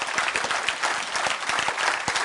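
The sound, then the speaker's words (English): A church audience claps their hands in steady, dense applause, many overlapping claps at a moderate, even loudness for a couple of seconds. “I'm going to wait while you clap your hands right there.”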